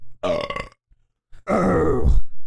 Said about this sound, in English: Burp. That was spectacular.